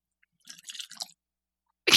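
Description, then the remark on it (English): Straight rye whiskey from High West Whiskey pours into a glass in a short burst of wet, uneven splashing and trickling lasting about half a second, then a brief louder knock right at the end. No one speaks. “Are you pouring it?”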